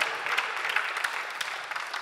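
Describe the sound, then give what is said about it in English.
Steady applause from an audience, many hands clapping at once in a dense, even wash of sound with a few sharper claps popping out, sustained for about two seconds. “You can clap for that. That's all right.”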